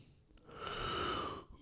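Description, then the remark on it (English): A single long, voiced yawn brought on by caffeine, swelling into a breathy, tonal stretch for about a second before trailing off, with no talking around it. “That was a caffeine fucking yawn.”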